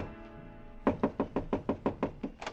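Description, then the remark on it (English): A rapid series of about ten firm knocks on the wooden door of hotel room 300, evenly paced, with no voices. “I stopped in front of room 300 and knocked.”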